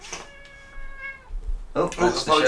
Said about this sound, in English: That's Chester the cat. He lives here, so suck it up. Yeah. Basically, don't moan.